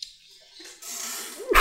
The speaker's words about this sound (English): I tried to make that sneeze quiet.